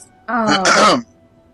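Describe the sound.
A single deliberate, conspicuous cough-like throat clearing, voiced, lasting under a second and ending in a breathy, rasping burst before quiet returns.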